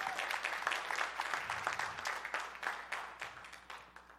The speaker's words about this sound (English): We are here to leave our children a church that is better than the one we just worshiped in just now. I'm going to wait for an applause for our children.